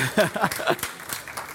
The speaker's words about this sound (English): My mom's here, everybody. Let's give my mom a hand clap.